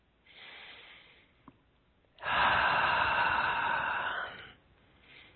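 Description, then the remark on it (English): Slow, deep breathing during a guided relaxation exercise: a soft inhale, then a long, louder airy exhale lasting a couple of seconds, and the start of another breath. No one speaks. “Let's take some nice deep breaths and slow down that breathing.”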